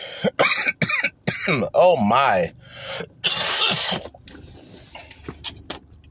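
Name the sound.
coughing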